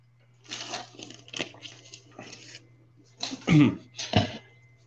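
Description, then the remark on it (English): A few soft slurping sips and swallows of water, followed by two sharper coughs or throat-clearing bursts, over a faint steady low hum with no talking. “Have to take a sip of water.”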